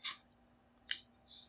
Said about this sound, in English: I had to rip my plate a little bit to give myself some more room.